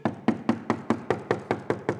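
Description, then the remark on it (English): Rapid, steady knocking on a door, about nine sharp raps in two seconds at an even pace, fairly loud with a hollow low thud to each hit and no voices. “They knocked.”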